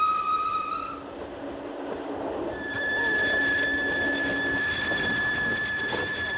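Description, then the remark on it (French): A train braking to a stop after a passenger pulled the emergency alarm: high, steady metallic squeals ring out over a loud, rumbling rattle of the carriages, with no voices. “Alors, madame, je vous somme de me dire pourquoi vous avez déclenché le signal d'alarme.”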